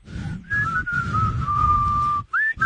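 A person whistles a wandering, sustained tune up close, the long steady notes broken by a few short gaps and ending with a couple of brief rising chirps, with no talking.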